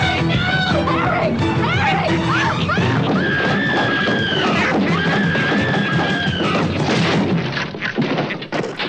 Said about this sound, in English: The wheelchair then crashes down the steps